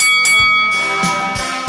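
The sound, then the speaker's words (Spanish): A boxing bell clangs loudly several times in quick, slightly uneven succession, its bright metallic ring sustaining between strikes, with no voices, opening the boxing segment En la Esquina on Tu Liga Radio 1330 AM. “Y que suene la campana.”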